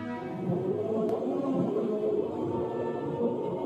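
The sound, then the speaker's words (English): A dense, discordant chorus of creatures turned into mermaid employees sings together, with wavering, overlapping tones and moans blending into a loud, continuous, sour-sounding drone with no speech. “That sounds like a klezmer band being fed to a whale with digestive issues.”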